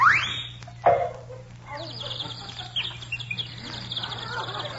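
A little bird singing: a rising whistled note, then a string of quick, bright chirps and trills over a steady low hum, fairly faint and continuous.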